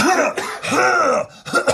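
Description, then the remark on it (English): A voice imitates a man's hacking coughing fit, a rapid series of harsh, throaty coughs and rasps running together with brief breaks between bursts. “And then like he'd start coughing a little bit, and then eventually he'd just be going.”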